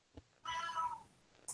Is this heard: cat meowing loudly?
yes